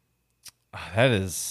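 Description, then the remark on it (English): A single short, sharp clack of a thrown pencil landing on a hard surface, followed a moment later by a person's voice. “Yeah, I threw my pen, my pencil leg hub too. I don't know if you heard that.”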